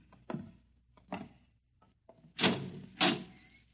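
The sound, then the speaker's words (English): A few soft, dull thuds give way to two loud, resonant clanks as a heavy steel door into the inner shell of a double-walled, fireproof silo, wood outside and steel inside, is worked open in pitch darkness, with no voices present. “Just a few steps up and another door.”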